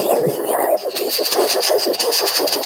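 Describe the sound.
A voice imitates a moving train, making a steady, continuous stream of rhythmic, breathy chugging bursts that keeps going without a break.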